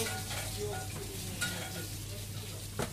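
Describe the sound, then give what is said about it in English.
Steady, dense sizzling of meat being browned off in a hot pan before going into the oven, a continuous crackling hiss with a low hum underneath and a couple of sharper pops or clinks near the middle and end. “I take about four or five minutes just to brown them off, and then in the oven maybe another 3 or 4 minutes.”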